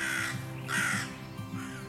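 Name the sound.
crow cawing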